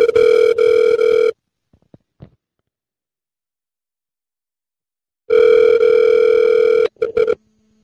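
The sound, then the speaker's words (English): A telephone ringback tone sounds twice, each a steady, buzzy, mid-pitched burst about a second and a half long, separated by silence with a few faint clicks. A short clatter and low hum follow. “So in honor of our good friend's birthday, let's call”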